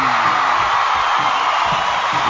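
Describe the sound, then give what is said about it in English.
A loud, steady wash of audience applause with cheering and a few whoops mixed in, dense and continuous for the whole moment with no one speaking over it. “Keep those applause going, baby.”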